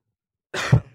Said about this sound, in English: Sorry, I've got a little bit of a cough.